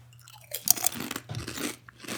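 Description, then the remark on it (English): Crisp, crackly crunching of a barbecue-flavored snack being bitten and chewed, a quick run of sharp bursts followed by steadier munching over a faint low hum, with no talking. “Every time I eat one of these, I'm like, wow.”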